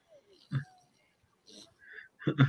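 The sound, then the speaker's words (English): A duck squawks as it is thrown, in a few short, harsh bursts with brief gaps between them, the last call loudest and most frantic. “The duck, the poor duck.”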